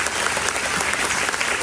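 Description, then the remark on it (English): Sustained, dense standing ovation from a large crowd in a gym as a 9-year-old girl runs off the stage into the arms of her mother, back from serving in Kuwait for 9 months; a steady wash of many hands clapping at once with no pauses or speech over it. “The crowd gives them a standing ovation.”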